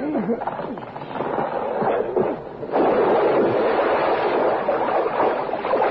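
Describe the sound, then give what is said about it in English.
Low churning rumble and murmuring water, then a sudden surge of loud, sustained rushing and splashing as a truck, shoved by two men, sinks into the water, with no voices. “As the truck submerges, the two men climb into the waiting car, which is being driven by a woman.”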